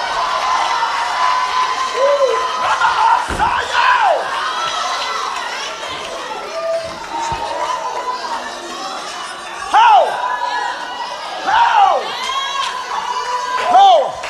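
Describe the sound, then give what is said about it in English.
A crowd shouts praise and cheers together in a dense, sustained roar, with individual voices rising into high whoops and cries that peak repeatedly over about fourteen seconds. “Some of you got 15 seconds left to put something in the atmosphere.”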